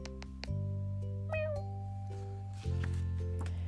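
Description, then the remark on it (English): A single cat meow with a rising then falling pitch rings out clearly over a steady, low humming drone that continues underneath, with no talking. “And the snake saw a cat. Meow.”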